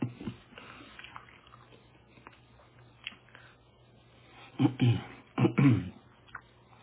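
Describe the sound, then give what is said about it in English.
Soft mouth sounds of chewing a communion wafer over a low hum, mostly quiet at first, then a few louder crunchy bursts close together near the end, with no talking. “If you're wondering why I'm silent, because I'm still chewing my communion wafer.”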